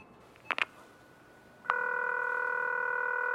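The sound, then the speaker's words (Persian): A pair of quick clicks, then a steady electronic telephone tone starts and holds unbroken to the end, moderately loud, with no voices; a phone call that goes unanswered because the person called is not at home. “امروز دوبار تلفن کردم ولی هنوز نتوانستم با گیتا صحبت کنم.”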